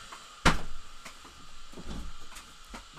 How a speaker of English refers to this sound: Let me close the door.